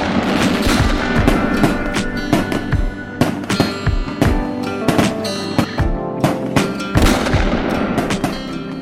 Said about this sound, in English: Was that fireworks or gunshots that just went off? I was shooting my gun at the fireworks.